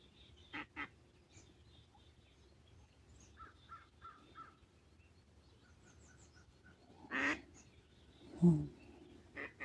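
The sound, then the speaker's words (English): Two ducks flying low over water call back and forth in short, scattered bursts, some quacks louder than others, over a low, steady outdoor background with no talking. “Two ducks in constant communication, flying low over the water.”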